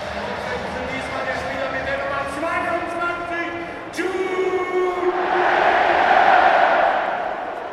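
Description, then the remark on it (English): A huge stadium crowd at a football match against Gladbach roars Jude Bellingham's name, not booing, in a long, drawn-out bellow. The sustained chant holds steady, then swells louder and brighter before easing off at the end. “That was a big Jude. That wasn't booing before you ask.”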